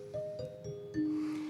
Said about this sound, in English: And it was WSB in Atlanta, Georgia, who bought a set of Deegan dinner chimes that you'd announce dinner with at a club or on a railroad car.